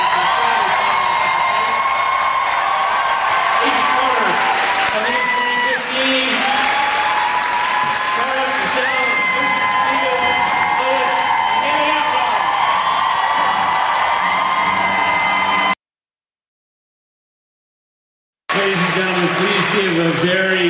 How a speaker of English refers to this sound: What I'd like you to do is give a great big round of applause.